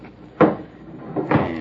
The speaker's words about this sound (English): Better make sure the door's barred tight. Can't tell when someone is likely to come in without knocking.